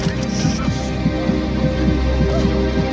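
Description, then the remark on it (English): A steady, deep heartbeat sound effect in a film soundtrack thuds in a regular rhythm, loud, layered over a thick, droning ambient hum with no voices; it is used in place of music. “The heartbeat, really, which we use very, very emphatically and very effectively, it takes the place of music.”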